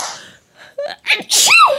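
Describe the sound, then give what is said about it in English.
A single sharp sneeze, loud, preceded by a quick intake of breath and ending in a bright, explosive burst with a trailing vocal tail. “Gesundheit.”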